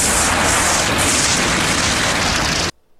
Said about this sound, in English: That's a lot of explosions for a trailer. That's a lot. And this movie has more explosions than Michael Bay film.